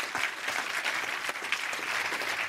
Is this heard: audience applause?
yes